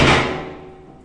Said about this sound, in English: So that's the door slamming, and now I'm in this small pokey room, which doesn't feel very welcoming, and with the marks on the walls from other people who've spent some time in here, it's not a very friendly place to be at all.